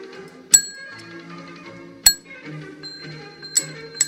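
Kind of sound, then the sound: signal or alarm, small bell being rung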